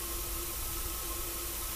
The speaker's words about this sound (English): An electronic hum. Oh, some static and a little bit of a beep that sounded like a connecting to the internet.